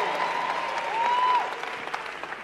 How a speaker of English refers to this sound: Come on, clap your hands for the pastor of Worship Harvest